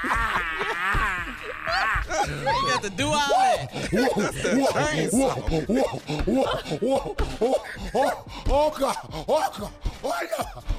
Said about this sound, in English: Come on, sir. Put that chainsaw on.